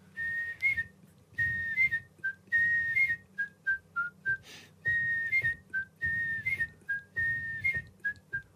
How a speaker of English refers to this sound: Oh! 20 years on the telly of the live of birds. Guess whose whistle introduced that? Alan Cumming's, the great Scottish actor.